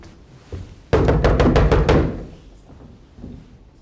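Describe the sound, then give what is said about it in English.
A quick burst of about seven firm, loud knocks on a wooden door, evenly spaced in under a second, with a faint echo afterward. “I knocked on this. We got a door right here.”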